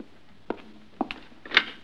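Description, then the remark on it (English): A front door being opened to let in an arriving guest: a few sharp clicks and a thump as the latch and handle work, then a brighter, louder clack at the end. No one speaks. “Yeah, I'll get the door.”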